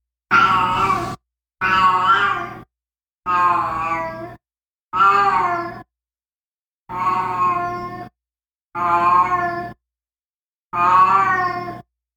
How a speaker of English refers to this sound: Just recently, like probably in the last 6 months or so, has developed this really low throaty meow. Her meow has changed? Yeah, or okay. Totally changed.